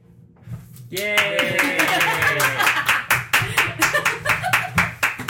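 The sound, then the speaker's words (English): A small group claps steadily for several seconds, individual hand claps clearly distinguishable, with voices calling out and cheering over the start of the applause. “I'm glad you applauded, because I always feel it's like two people.”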